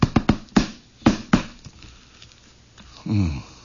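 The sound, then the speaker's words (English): Sharp, hollow knocks on a door rap out in quick irregular bursts, three fast ones, then a few spaced strikes, followed by a pause and a short voiced murmur at the end. “But that awful moment when everybody's sitting down to supper or that peaceful instant and you hear on the door this...”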